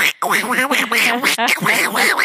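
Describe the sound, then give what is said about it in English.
A person does a Donald Duck voice impression, squawking out a rapid, raspy stream of angry quacking sounds, loud, with almost no pauses over a couple of seconds. “That Your baby loves my Donald Duck impression.”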